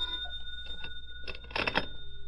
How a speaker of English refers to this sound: It was about 4 p.m. when the phone rang.